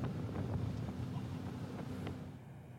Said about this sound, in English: Few waves there. Oh yeah. Oh yeah.